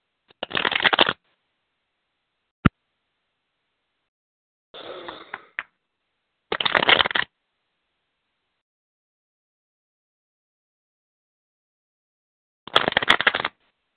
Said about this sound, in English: This is what I'm going to do. I'm going to shuffle some cards, okay? And I want you to tell me when to stop shuffling, okay?